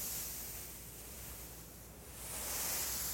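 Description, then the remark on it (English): A soft, hissing whoosh imitating ocean surf, a Foley sound effect made by rubbing a blue microfiber pillow. The rushing noise dips in the middle and then swells again, with no voices. “Listen to the sounds of the ocean.”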